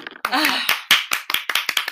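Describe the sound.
A quick run of about eight sharp hand claps in an uneven rhythm, fairly loud, with a voice briefly sounding over the first few claps.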